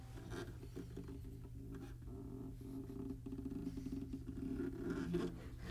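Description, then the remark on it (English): Fingers slide along the strings of a K2 tenor premium ukulele, making a continuous run of rough squeaks and scrapes over a steady low drone, a creaky, grinding texture that grows slightly louder toward the end. No one speaks. “Why is it when I do it, there's so much noise? It sounds like a boat, like an old boat, ship, right?”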